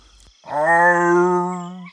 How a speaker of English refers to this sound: Lockie, the laziest cat in the forest, was a big furry creature who spent all day sleeping, except for a little stroll or a morning snack. He had the funniest meow.